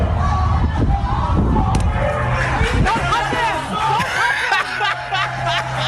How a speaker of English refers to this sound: And listen, the best part, listen very carefully to the cheers of the people in the restaurant. There's no sympathy for the climate protesters here at In-N-Out Burger.